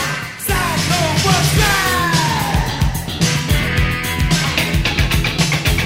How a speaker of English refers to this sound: It sounds like a dolphin. Those guitar rigs sound like a dolphin. I think this chorus sounds like you're in Contra and you're about to like shoot the mothership down.